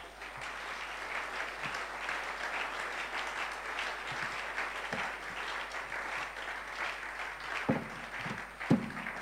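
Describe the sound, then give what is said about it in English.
A crowd claps steadily, a dense wash of many hands with no clear rhythm, holding an even level throughout, with a few sharper individual claps standing out near the end. “Clap your hands.”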